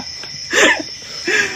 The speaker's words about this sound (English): Bro, I didn't think this was possible. An ad just popped up in our cricket noises. I thought I vetted the video.